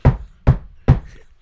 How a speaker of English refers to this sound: And if you've been buried alive, just knock on the top of your coffin.